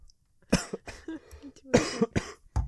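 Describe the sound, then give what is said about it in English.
A fit of harsh coughing, about five bursts spread over a few seconds, some sharp and some muffled, as someone tries not to cough. No one speaks. “Sorry, I'm trying not to cough, but it's really hard.”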